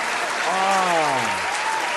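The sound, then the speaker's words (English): Dense, steady audience applause after a singing performance fills the whole clip at an even loudness, while a single voice lets out a long, sliding whoop partway through. “Another round of applause right there.”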